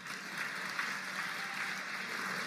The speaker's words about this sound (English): Now, before we get the show on the road, I do want to take a moment to acknowledge that amazing, well-crafted masterpiece of an introduction. Whoever you are who did that, thank you very much. Big round of applause for that man.